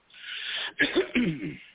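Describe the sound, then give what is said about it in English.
A man clears his throat before reading a poem aloud: a breathy, hissing rush of air followed by two or three gruff, rasping voiced pushes, fairly loud and with no talking. “You know, it's something I got to clear my throat.”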